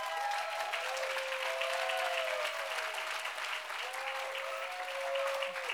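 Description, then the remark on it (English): A church audience applauds steadily for their chief, a dense, even wash of clapping that holds at a constant loudness throughout, with faint whistles or cheering tones weaving through the crowd noise. “So I want you to give a big hand of applause to our chief,”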